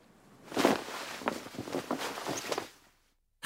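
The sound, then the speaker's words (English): A pelican dives into the ocean: a broad rushing splash that swells quickly then breaks into several choppy spatters over about two seconds before fading out, with no voices. “I heard a splash when a pelican dove into the ocean.”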